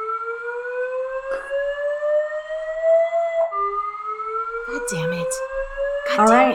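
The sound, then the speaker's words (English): A building fire alarm blares nonstop during an unannounced fire alarm test, a loud, steady droning tone that creeps slowly upward in pitch, while a person speaks a couple of brief words over it. “It just turns out that there was a fire alarm test that no one was notified about today.”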